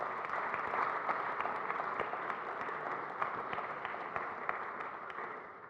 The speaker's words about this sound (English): Thank you for, let's give a round of applause for all of those who did share today.